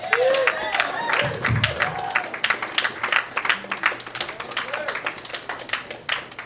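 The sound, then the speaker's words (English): A comedy show audience applauds the headlining comic with dense, continuous clapping that stays fairly loud for several seconds before thinning out, with some cheering voices mixed in. “Everybody give me a round of applause.”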